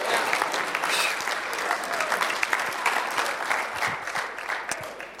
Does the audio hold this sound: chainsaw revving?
no